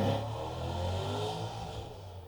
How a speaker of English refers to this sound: Got someone showing off their big car and their small penis outside.